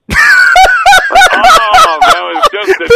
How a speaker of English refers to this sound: And I really got to change that alarm sounder on my phone.